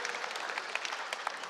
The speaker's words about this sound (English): So describe this one. Your clap, your hand clap helped me to understand how you felt and that you appreciate it. But describe it.